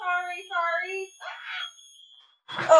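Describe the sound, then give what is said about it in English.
A smoke alarm, set off by a smoking candle lit in the same room, sounds two loud, shrill electronic beeps in quick succession, followed by brief noisy bursts that may be a voice. “Yes, the chemicals are setting off the fire alarm.”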